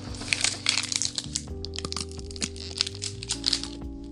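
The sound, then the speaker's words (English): Loud, crisp crunching of food being chewed, a steady run of sharp crackly bites and crumbles over a low, constant hum, with no talking. “Alrighty, so, actually probably not gonna eat during this because the crunching is very loud and I can't talk while I eat.”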